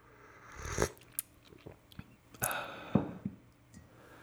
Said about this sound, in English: Let me sip some more coffee.